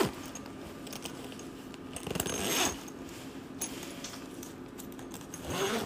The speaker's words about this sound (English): And then I can zipper it up.